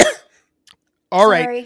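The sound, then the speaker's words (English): A woman coughs once, a single sharp, loud, unmuffled cough without covering her mouth, followed by a short silence and then a brief stretch of someone talking. “She doesn't ever cover her mouth when she coughs.”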